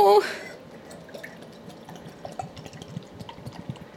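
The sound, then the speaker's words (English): Lager-coloured beer being poured to fill a glass, a steady gurgling stream with fizzy, bubbling crackle, following a brief loud voice at the start. “I'm going to pour you a full glass.”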